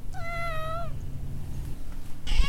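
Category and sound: animal, cat meowing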